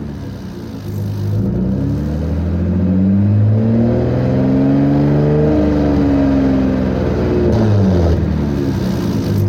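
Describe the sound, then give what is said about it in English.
A V6 Raptor truck engine revs up and down repeatedly, its deep harmonic drone rising and falling in smooth sweeps, loud with no talking. “That does not sound like the Raptor I know. No, it definitely has that more high-end, like, sports car sound.”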